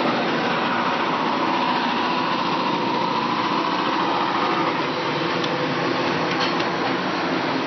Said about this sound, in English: There's been a lot of construction on my street. Google Fiber is on my street right now. AT&T was on my street last week. They're tearing up everything. And it sounded a little bit like this when I walked outside.